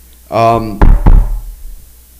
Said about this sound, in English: The hell was that? Me knocking on wood, it doesn't happen again.